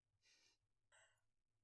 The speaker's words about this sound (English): Okay. Oh, yawning, sorry.